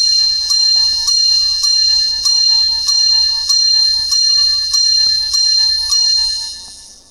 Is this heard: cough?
no